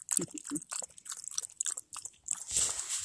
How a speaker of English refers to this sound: I got her own special bowl to drink out of. And of course, she wants to drink out of my water bottle, not her dog dish, because she's a human.